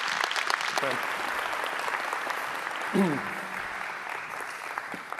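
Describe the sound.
Sustained audience applause, a dense steady wash of many hands clapping at even loudness, with a couple of brief voices calling out during it.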